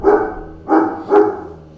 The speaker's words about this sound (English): Dog literally stopped barking right when the video was done.